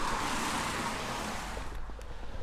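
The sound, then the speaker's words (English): A car rushes past on a road in the rain, a loud, broad hiss of tyres with a low engine rumble that fades away near the end. No one speaks. “And as you can hear cars in the background, also try not to get ran over with a bit of luck.”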